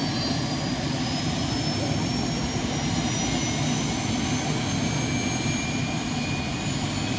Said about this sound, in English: Two state troopers, helicopter pilots that work for the state, came and talked to the kids, gave them a whole lesson on how helicopters work and what they do. Now they all get a chance to watch it take off.